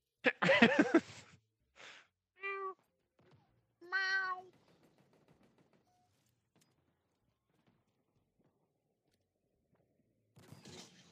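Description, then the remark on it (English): A cat meows several times: a drawn-out, raspy cry followed by shorter, clear, tonal meows separated by quiet pauses, with a brief rustle near the end. “Was it your cat?”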